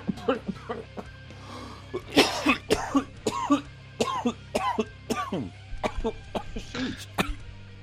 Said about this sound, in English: But clearly you got something to cough about. Let's give them something to cough about.